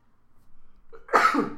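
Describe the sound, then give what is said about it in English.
A single sneeze: a faint, building intake of breath followed by one sudden, loud explosive burst that trails off quickly. No one speaks. “Just cut your sneeze out.”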